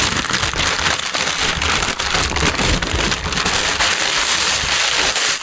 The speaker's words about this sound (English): Okay, I'm opening. We're getting to a layer of tissue. We're opening.